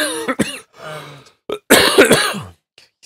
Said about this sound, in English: I know, you're going to edit all these coughs out.